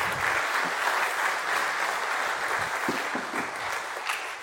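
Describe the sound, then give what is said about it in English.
A church audience applauds together after a prayer, a dense, steady wash of many hands clapping at even loudness for several seconds with no voices. “Let's give Nan a round of applause.”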